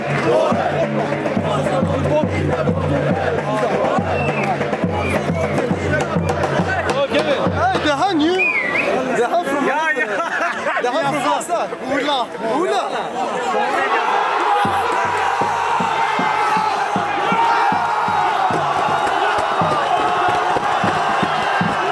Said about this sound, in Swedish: Ett plötsligt och innerligt målvrål från västra Stockholm. Ett eko, en signal som hörs och betyder långt, långt därifrån.